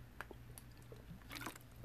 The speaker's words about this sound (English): Can you hear me drink water?